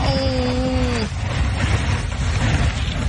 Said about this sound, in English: Here's what it sounds like. See if I can play a little bit of this audio for you. That's the boat going through the ice.